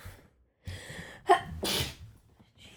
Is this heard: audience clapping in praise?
no